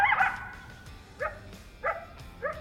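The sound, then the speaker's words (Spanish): A coyote lets out a longer yelping bark, then three short, high yips spaced evenly about half a second apart, standing out clearly against a quiet background with no voices. “Además de los pájaros cantores que anidan aquí y de los insectos de los que se alimentan, en cualquier momento se pueden ver animales de presa y depredadores, siendo el coyote el más común de estos últimos.”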